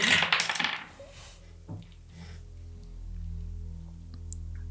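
Dice clatter and tumble across a hard surface in a quick burst, rolled for an Insight check and coming up 23, followed by one last small knock as they settle, leaving a low steady hum with no voices.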